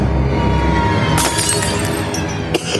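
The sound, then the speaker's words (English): A tiny, elegant shot-glass-like glass holding a little liquid shatters with a bright crash, followed by a brief scatter of tinkling shards and a second small clink near the end. It is fairly loud, with no voices. “So there's that the first glass and breakage.”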